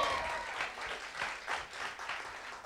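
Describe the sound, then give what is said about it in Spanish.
Polite, golf-style applause from a group: a steady patter of many hands clapping at a modest level, with faint pulses that swell slightly and ease off over a few seconds, with no voices. “And to those of you that had golf clapping, it's still going to happen to you.”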